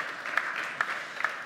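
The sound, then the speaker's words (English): An audience claps steadily, a dense wash of many hands with a few sharper claps standing out, at a moderate, even level throughout with no voices. “We can clap for that.”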